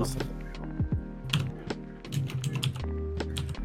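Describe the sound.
Forceful typing on a computer keyboard, a fast irregular stream of sharp clacks, with a faint low hum and murmur of voices in the background.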